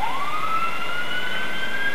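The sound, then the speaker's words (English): A police car siren wails steadily as it passes by, its pitch sweeping slowly upward over a constant hiss of road and engine noise, heard from inside a car. Loud, with no one talking. “Here comes the cops.”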